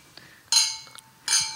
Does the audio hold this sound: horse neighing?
no